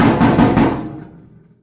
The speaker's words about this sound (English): Knock on wood. Knock on wood. Knock on microwave.